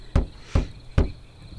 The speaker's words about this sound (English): Okay, so you knock on the door.